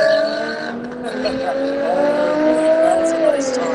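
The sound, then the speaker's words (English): T4 race cars, including those of Jeremy Butts and Chris Windsor, roar steadily and loudly down the backstretch toward turn 12 with six laps to go, their high, buzzing whine layering together and climbing gradually in pitch as the cars accelerate, with a brief dip before the roar swells again. “All right, looking at coming down the backstretch here, Jeremy Butts and Chris Windsor, I can see them thundering down towards turn number 12 right now.”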